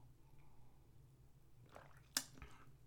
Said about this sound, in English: I've only had one little sip here, so I'm going to take a second one and get the full spectrum.